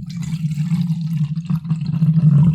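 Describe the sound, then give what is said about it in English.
Water pours steadily to refill a cup, a continuous gurgling fill lasting a few seconds with no voices. “I just picked up the water to refill, and the cup holder has come with it.”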